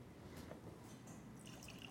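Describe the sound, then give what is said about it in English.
Red Bordeaux wine pours steadily from a bottle into a glass beer pitcher with a soft, bubbling slosh, a rising hollow ring near the end as it fills, letting it slosh and gurgle to flush it with oxygen. Quiet, with no talking. “I have to say, watching you upend an expensive bottle of Bordeaux into a beer pitcher doesn't give me a lot of confidence in the providence of your education in wine, but we'll try.”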